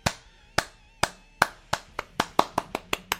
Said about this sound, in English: Thank you for clapping. It took me a while to get through it, but, you know, it was a feat. Is that why you're clapping, I think, maybe? No, you said to either say something or applause at the end. I chose to applause at the end.